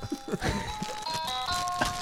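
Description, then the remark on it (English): A toy floor piano, a walk-on potty piano that goes around a toilet, plays a few bright, electronic notes of Jingle Bells on a first try, sustained beeping tones stepping through the tune, with soft thumps at the start, moderately loud. “Jingle bells, first try.”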